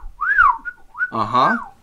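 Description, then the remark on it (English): Bird-like whistled chirps glide up and down in pitch, then a buzzy, warbling trill rises and falls before one last short whistle. It sounds like a person imitating a chirping bird. “Who the fuck let a bird in here?”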